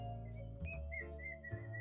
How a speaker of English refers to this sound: Stop whistling, you nugget.